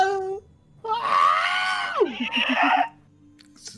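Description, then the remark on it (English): A Wilhelm scream: one loud, sustained shriek lasting about two seconds that drops sharply in pitch at the end and breaks into a few short choppy bursts, with nothing else around it. “Just a Wilhelm scream.”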